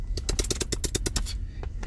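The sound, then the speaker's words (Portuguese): A rapid burst of gunfire sound effect: about ten sharp, crackling shots in a fast, even rhythm, then a brief pause and one final shot, over a steady low rumble. “Que tiro foi esse?”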